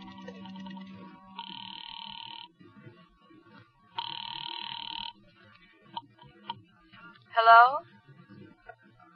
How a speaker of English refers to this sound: I took a chance that the old dame on the phone might have been brushing me off the other night, and I went into a booth and dialed a number.